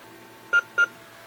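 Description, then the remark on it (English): Two short, identical electronic beeps sound close together, a clear high tone from a digital bathroom scale shutting itself off automatically after a couple of seconds when no one steps on it, with a faint low hum underneath and no speech. “Now, after a couple seconds, if you have not, in fact, stepped onto the scale, it will go off automatically. And here's what that sounds like. You get two beeps.”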